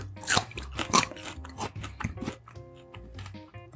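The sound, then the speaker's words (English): Loud, crisp crunching of raw broccoli being chewed, with repeated sharp bites in an uneven rhythm that soften toward the end, alongside faint low tonal sounds. “Try your broccoli there. Broccoli.”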